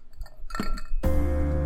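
A Glencairn glass and a Stag Junior bourbon bottle clink together in a few light taps, followed by a sustained ringing, rushing sound that carries on to the end. No one speaks.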